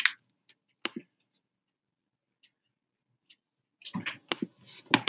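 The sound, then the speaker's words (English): Crisp crackling of paper being crumpled about 1 foot from a microphone while a person speaks into it: a few sharp rustles at first, a quiet pause with faint ticks, then a denser burst of crinkling toward the end. “This is me speaking into the microphone at 1 foot while crumpling paper.”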